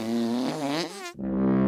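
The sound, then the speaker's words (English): A loud, comical fart sound effect illustrating a woodlouse's full-body fart: a long buzzy, wobbling blast with pitch sliding up, a brief cutoff, then a steady droning continuation. No voices. “These blimmin' champions let off full-body farts, lasting up to an hour at a time.”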